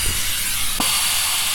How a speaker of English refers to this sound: Cargo is aboard. Retracting claw. Closing outer doors. Pressurizing airlock.